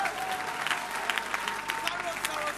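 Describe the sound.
A church audience claps steadily throughout during a sermon, a dense patter of many hands at moderate volume with a few sharper claps standing out, and faint voices mixed in, giving the Lord a clap at the preacher's request.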